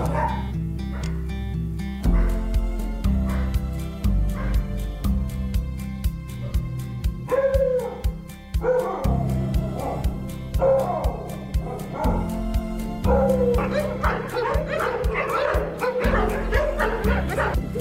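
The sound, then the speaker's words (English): A frightened female dog in pain barks and yips repeatedly, mixed with high whimpering cries, loud over a steady, continuous background sound that runs throughout. “But she was still very frightened and was clearly in some pain.”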